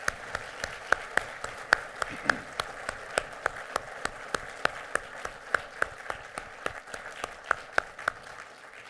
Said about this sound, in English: Crosspointe Baptist Church, can we show appreciation for the color guard this morning with a round of applause?